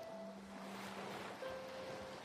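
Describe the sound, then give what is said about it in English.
Soft ocean waves wash steadily toward shore in a continuous, gentle hiss of surf, with faint sustained tones humming quietly beneath. No one speaks. “And then, slowly, as the waves make their way to shore, you exhale, feeling any negativity or stress leave your body.”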